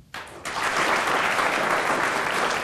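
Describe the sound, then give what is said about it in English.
A crowd bursts into applause, starting with a few claps and quickly swelling into a full, steady round of clapping that continues loudly without voices. “Well, sticking your neck out since you've just had a clap on that already.”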